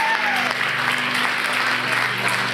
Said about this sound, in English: Come on. Can you give Jesus a hand clap tonight?